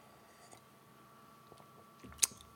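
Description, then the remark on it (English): A quiet sip of Granite Imperial Stout for Black is Beautiful: faint mouth noises, then a brief slurp ending in a sharp wet click near the end, with no talking. “This does exactly what you would hope, which is, I need to have a sip.”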